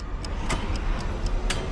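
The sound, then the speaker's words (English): A clock counting upwards ticks quickly and steadily, about four crisp clicks per second, over a low, constant background hum with no voices. “It's a clock counting upwards.”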